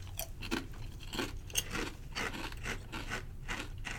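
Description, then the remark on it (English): Loud, crisp crunching of a thick, standard kettle-cooked potato chip with a hole in it being chewed, a rapid series of sharp, brittle bursts in an irregular rhythm with no talking. “It's going to be a nice Kettle cooked chip.”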